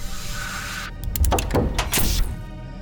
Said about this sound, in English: Is he laser welding the door shut? Yes, I think he is. Very thorough.